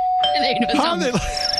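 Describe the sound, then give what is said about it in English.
A doorbell rings with a steady, sustained electronic tone that lasts the whole moment, while a voice-like warbling passes over it partway through. “How they learn to ring the bell?”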